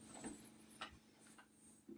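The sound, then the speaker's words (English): A clock ticks quietly at a slow, even pace, about four soft clicks in two seconds, over a faint steady hum with no voices. “But after a while, the ticking stops. Or the ticking slows down again, and the howling is over.”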